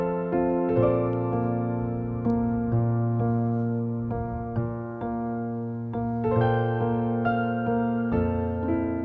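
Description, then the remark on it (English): A steady instrumental theme tune plays on its own, with sustained harmonic chords and regular rhythmic note changes at a constant, fairly loud level and no voices. “I'm going to hit the theme song and we're going to get into it”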